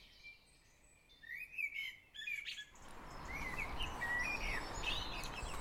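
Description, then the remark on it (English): Several birds chirp and tweet in quick, overlapping calls against a soft outdoor hush, some songs bright, others fainter: a dawn chorus just starting up very early in the morning during a cold snap. “It's very early morning and I'm just emerging from last night. The birds are just waking up.”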